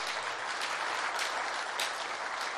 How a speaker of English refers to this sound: the elders of the church, the key leaders, as well as our partners that are forming up this church. Let's give them all round of applause.